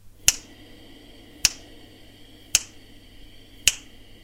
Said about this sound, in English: I snip with my finger so we have the timing right.